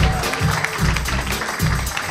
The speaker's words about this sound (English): Guys, this guy deserves much more applause. I mean, this guy's been here for like 20 fucking years.